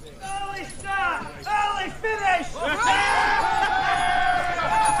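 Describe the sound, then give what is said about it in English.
A large group of men of an army cheering and shouting together, many voices rising and falling in overlapping whoops that build into a sustained, swelling roar over five seconds. “What are they cheering about over there?”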